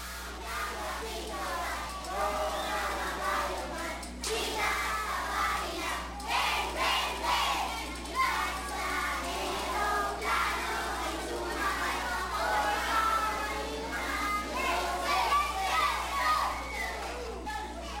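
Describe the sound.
A group of children sings 'I'm in the Lord's Army' together, many young voices joined in a lively, continuous chorus at steady loudness, with a constant low hum running underneath.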